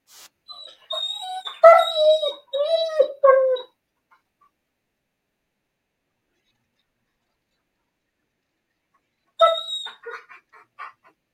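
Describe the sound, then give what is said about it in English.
A pup howls and whines along to music in wavering, sliding tones for a few seconds, goes quiet for a long stretch, then lets out another short burst of howling near the end. “I think the pup likes the music.”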